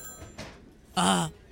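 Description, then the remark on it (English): A voice imitates a telephone ringing in a role-played Asian restaurant: one short, loud, buzzing trill lasting about a third of a second, preceded by faint soft knocks and murmurs. “The phone ringing.”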